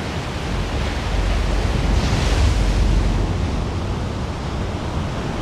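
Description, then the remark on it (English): Heavy surf at Nazaré roars continuously, a big wave building and crashing around the middle before settling into a broad, rushing wash of whitewater, with wind buffeting the microphone throughout. “Failure means both will be buried by the oncoming wave.”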